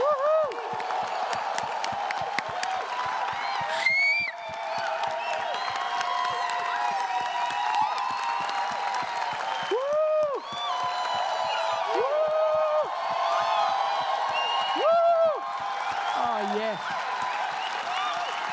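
A large crowd claps and cheers steadily in celebration of those who have come to Jesus, with scattered whoops and high-pitched shouts rising above the dense, continuous applause throughout.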